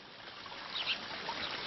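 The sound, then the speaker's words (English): Water trickles and splashes steadily in a continuous, gentle rush from a small waterfall, with no voices present. “But I have noticed one of my victims over there, by the waterfall.”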